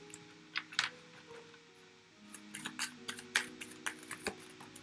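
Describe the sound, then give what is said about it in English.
A deck of tarot cards being shuffled: a quiet run of soft papery flicks and taps, sparse at first and then quicker and busier, with no voices. “I've shuffled this so many times and so many cards have come out and I haven't taken any of them.”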